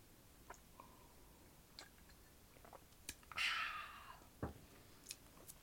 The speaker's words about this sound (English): So first, I'm going to take a sip of wine.